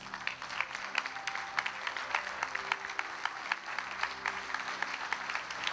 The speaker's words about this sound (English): We want to give you a big clap and a big honor for your courage, for your determination, for everything about who you are.